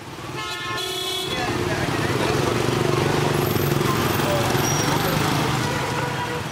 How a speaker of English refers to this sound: We're in Hanoi, the capital of Vietnam, and what you can hear right now is the rush hour traffic. Pretty crazy, right?